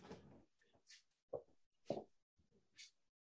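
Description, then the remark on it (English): A door is being shut, with a few soft thuds and clunks plus a brief higher scrape or squeak, fairly quiet and with no one talking. “I got to shut this door.”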